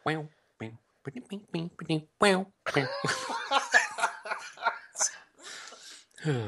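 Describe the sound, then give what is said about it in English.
Loud fit of repeated coughs in quick bursts, edging into laughter, then a denser stretch of coughing and laughing voices that runs to the end. “I'm going to faint from the coughing so much.”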